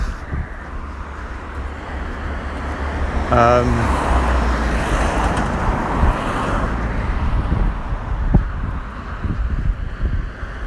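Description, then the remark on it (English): A car passes on a road. Its steady tire and engine rumble swells a few seconds in and stays loud, with a windy, rushing roar of traffic underneath. “Saw a car go past with Sea Guys.”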